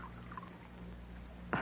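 A quiet, steady trickle of tea poured into a cup, with a soft low hum underneath and a brief ringing clink of china near the end.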